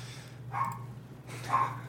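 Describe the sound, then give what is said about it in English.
Two faint dog barks, spaced about a second apart, sound over a steady low background hum, with no one speaking. It is raining, and the dog, scared of rain, barks at it. “Well, it's raining here, and she's scared of rain. So she'll bark at it, and then she'll shake for until it stops.”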